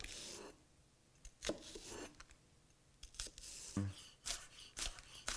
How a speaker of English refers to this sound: Little heat under our nonstick pan, knife, green onions. So when they're a thick green onion like this, I just give them a little zip down the middle. Just make life a little easier for me.